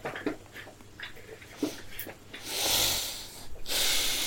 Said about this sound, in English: Heavy breathing. Yes, heavy breathing. Heavy breathing.